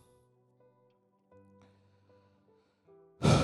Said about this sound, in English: Let's take a deep breath.